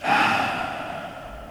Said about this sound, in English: And heavy breathers. I don't know. It's an issue. Like, people can't help the way they breathe.